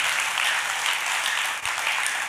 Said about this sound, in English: Give it a clap offering this morning.